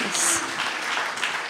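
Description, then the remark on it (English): A crowd claps steadily, a dense rattling wash of many hands that holds at an even volume throughout, with a brief whistle-like tone near the start. “Yes, yes, you can clap, you can clap, yes.”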